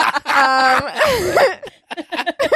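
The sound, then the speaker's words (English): A loud, drawn-out voiced yawn or groan with heavy breathy exhalation and a sliding pitch, followed by a few shorter breathy vocal bursts. “What are you breathing about?”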